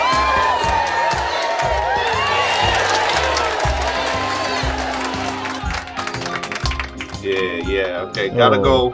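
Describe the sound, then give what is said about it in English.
A crowd breaks into sustained applause and cheering for performers after a short comedy set, dense clapping with whoops and shouts over a steady low rhythmic beat, loud throughout, thinning slightly near the end as voices rise. “Let's give them the light and give them a round of applause, shall we?”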